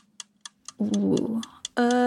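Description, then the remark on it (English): A countdown timer, put on the board for a timed round of quick questions, ticks steadily and briskly, about four sharp ticks per second, clear, while a voice briefly murmurs over the middle and end of the ticking. “The ticking really makes it hard.”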